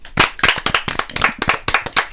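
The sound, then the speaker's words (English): A short round of applause: quick, sharp hand claps in an uneven, overlapping patter, fairly loud and steady for about two seconds, with no voices. “Let's give a round of applause for our girl Taylor.”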